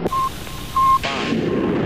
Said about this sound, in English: All three engines up and burning. 3, 2, 1, 0, 0, and liftoff.